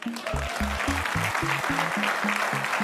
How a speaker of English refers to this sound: To enthusiastic applause.